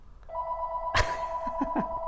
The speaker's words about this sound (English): What is this? A little phone call?